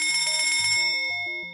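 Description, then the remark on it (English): A fire alarm bell rings continuously in a station as a test of warning passengers, its clapper striking in a fast, steady rattle with a bright, metallic, high-pitched tone. It is loud and sounds alone, with no voices. “One day, a simple fire alarm.”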